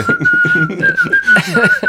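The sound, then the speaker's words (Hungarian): Someone whistles a sustained, slightly wavering tune, the bright tone running continuously through the whole moment while murmuring voices or busier sounds move underneath. “Viszont te jól fütyülsz.”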